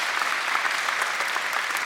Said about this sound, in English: Good morning. Yeah, let's clap for that.